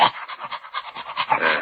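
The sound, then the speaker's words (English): A Great Dane pants rapidly and steadily, a breathy rhythm of quick huffs repeating about five times a second, with no voices or other sounds around it. “Well, he looks like an intelligent dog.”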